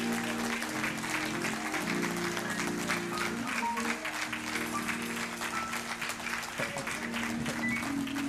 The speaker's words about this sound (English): Please join us in giving them a big, big round of applause.